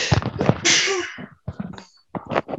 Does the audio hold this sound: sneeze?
yes